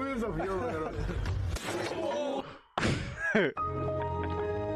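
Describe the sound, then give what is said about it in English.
A sharp open-hand slap to the face in a slap fight lands with a single loud smack, surrounded by raised voices and shouting before and after the hit. “I mean, he could probably take a slap like that.”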